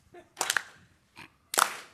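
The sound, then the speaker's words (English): A slow clap: a handful of sharp, crisp hand claps with uneven gaps between them, fairly loud against an otherwise quiet background, with no talking. “We hear a slow clap.”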